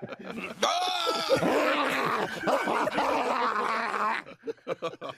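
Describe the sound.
A man imitates a dog, letting out strained, whining yelps and drawn-out groans in one continuous, loud burst lasting a few seconds before trailing off.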